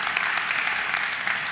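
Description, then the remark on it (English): A church audience applauds the volunteers who help in the car park every Sunday, a steady wash of many hands clapping at once, dense and continuous for the whole moment with no voices standing out. “I think we should applaud them.”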